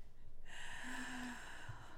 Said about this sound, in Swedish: Och dra ett djupt andetag med öppen mun. Och då så här. Ja. Och så ska du känna luften mot baksidan av halsen när du drar in ett djupt andetag. Dra in.